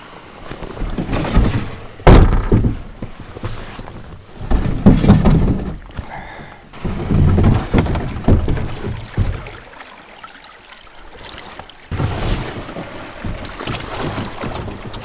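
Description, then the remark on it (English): A kayak is launched off a rocky shoreline on the Isle of Skye, scraping and thudding over rocks in a few heavy bumps, followed by splashing and sloshing water as it slides in, with wind rushing in the background. “So a bit of a rocky launch, and maybe not the best way to test my sea legs.”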